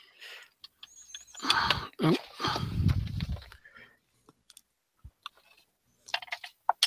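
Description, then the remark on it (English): A small four-sided die rattles and tumbles across a hard tabletop in a brief clatter, followed by a few faint scattered clicks and taps before it settles, landing on a four. “roll like a 1 or a 2. A 2-sided, 4-sided dice, and tell me what roll you get.”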